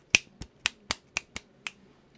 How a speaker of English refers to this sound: I think you started with, like, tapping your fingers together, so, like, two fingers.